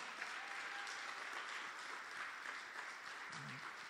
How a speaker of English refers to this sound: The louder your hand clap, the bigger your breakthrough. I'm telling you, the louder your hand clap, the bigger your breakthrough will be.